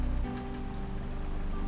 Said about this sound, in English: Meanwhile, the forest is being washed by the rain, and it smells all lovely and clean.